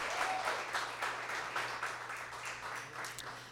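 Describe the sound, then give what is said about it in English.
A crowd applauds the artists steadily, many hands clapping in a dense, continuous wash of sound at an even loudness for several seconds, with no voices breaking through. “How about another round of applause for our artists,”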